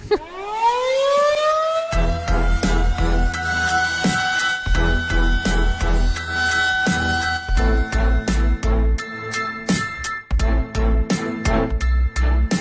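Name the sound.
air raid siren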